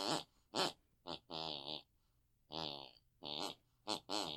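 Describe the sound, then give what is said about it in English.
A voice imitating a mother's snoring: a series of buzzy, nasal snorts, some short and clipped, others drawn out, with changing pitch so the run of snores forms a rough tune, the wedding march by Mendelssohn. “hear what my mother's snoring”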